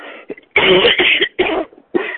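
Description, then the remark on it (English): A brief throat clear followed by a fit of loud, harsh, raspy coughs in three or four bursts, from a morning tickle in the throat, with no talking. “Excuse me, I don't know what's with the tickle this morning in the throat.”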